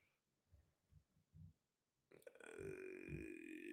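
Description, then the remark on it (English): Several soft, low thumps give way to a loud, drawn-out belch that rumbles and croaks for more than a second, with a strained, tonal pitch that holds to the end. “I just belched, hashtag a professional.”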